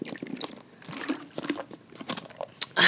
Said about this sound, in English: Sorry, I am so thirsty. I'm just gonna, now that I don't have anyone else to talk, man, my throat hurts so bad. Let me just get a little sip real quick.